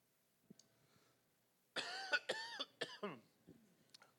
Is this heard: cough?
yes